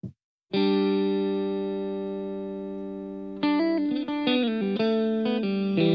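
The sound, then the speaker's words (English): A 1995 rock song opens with a loud, distorted electric guitar chord that rings and sustains for a few seconds, then shifts into a run of picked notes. No singing is heard. “So the result is our first song, ladies and gentlemen, I'm going to share with you.”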